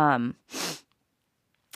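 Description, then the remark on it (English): A short voiced murmur is followed by one loud, wet, congested sniff through a nose stuffed up by allergies in December, a brief hissing intake, and then quiet apart from a tiny click at the end. “I just thought about this as I was sniffling.”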